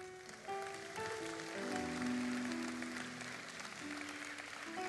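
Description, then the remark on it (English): A crowd applauds steadily for several seconds, the dense clapping holding at a fairly even level, with faint sustained tones underneath. “But, hey, you know why you clapping?”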